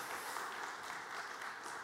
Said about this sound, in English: You could give Lord a clap offering for that if you want.